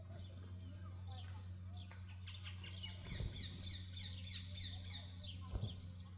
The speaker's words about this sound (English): Could you hear that? In the trees right here on this mountain, there are birds chirping. And they're preaching a sermon that is 1,000 times better than mine. Do you know why they're chirping? Because they're alive.